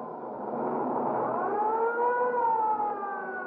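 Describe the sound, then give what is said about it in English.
An ambulance siren wails steadily, its tone sliding slowly up and then down in a long sweep, loud, with a low rumble of traffic beneath it, as the ambulance races to a man run over by a streetcar at the corner of 8th and Hill Street. “The ambulance is on its way now and be here in 2 minutes or less.”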